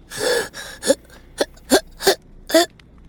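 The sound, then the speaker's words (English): A quick run of about seven sharp, hiccuping intakes of breath, breathy and partly voiced, coming in an uneven rhythm with brief pauses between them, with no talking. “Her breath quickens into a rapid-fire hiccup.”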